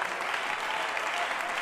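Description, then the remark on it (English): An audience claps their hands together in praise to God in a dense, continuous burst of applause, many overlapping claps blending into a steady, bright wash of sound with no speech. “Can we clap our hands to him and give him praise?”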